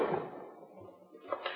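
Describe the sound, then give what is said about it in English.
A desk drawer holding bank statements is pulled open with a quick, rough sliding scrape that fades out, followed by a couple of soft knocks as it settles. No voices are heard. “They're right here in this drawer.”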